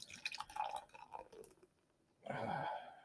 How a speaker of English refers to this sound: I know you usually like being outside. Hanging out when it's raining outside.